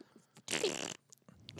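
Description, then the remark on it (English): A wet mouth noise imitating a fart: a loud, buzzy blurt lasting about half a second, followed by a shorter sputtering burst after a brief pause. “Why does it sound like you're farting”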